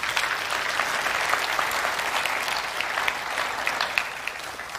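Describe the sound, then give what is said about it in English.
A room full of people claps steadily for those who shared, a dense, sustained wash of applause at moderate volume that holds even throughout without any voices standing out. “Can we just take a moment, give a round of applause to all those who shared?”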